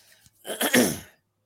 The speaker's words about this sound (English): Sorry, I'm clearing my throat a lot. I'm just kind of recovering still.